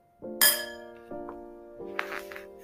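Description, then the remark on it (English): New pots and pans clink together in a few distinct knocks, each leaving a bright metallic ring that lingers, with a brief rattle of clattering near the end. Fairly clear, no voices. “Georgia got new pots and pans and cooking supplies”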